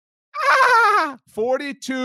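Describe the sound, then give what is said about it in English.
A dolphin sound-effect drop played for the Miami Dolphins: a long, loud squealing call that slides downward in pitch, followed by two shorter chattering squeaks. “Give us the Dolphin sound drop, Pete.”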